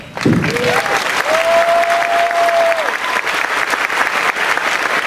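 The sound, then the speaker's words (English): Sustained audience applause for volunteers, dense and steady, with many hands clapping at once and a brief whistle rising above the crowd near the start. “Lead us in a round of applause for our volunteers.”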